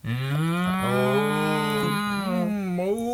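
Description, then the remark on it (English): A drawn-out, loud moo lasting about three seconds, voiced by a person imitating a cow, with a wavering pitch and a slight dip near the end. “We're gonna be cows, guys.”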